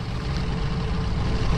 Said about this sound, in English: All lanes to the Tidings Bridge are backed up. I've got too much time to contemplate the crossing, high above the mile-wide Susquehanna River.